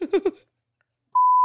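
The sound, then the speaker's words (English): A brief burst of voice gives way to a steady, high-pitched electronic beep from a pressed sensor button, a single sustained tone around one kilohertz that holds loud and unbroken until the end. “Get off the sensor button. They don't like that in their ear.”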